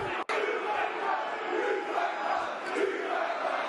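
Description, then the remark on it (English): A dense Millwall football crowd roars in sustained unison at Rotherham manager Steve Evans, a loud rolling chant with rising and falling surges of massed voices, broken briefly by a sharp click near the start. “Millwall crowd summing up better than I can do.”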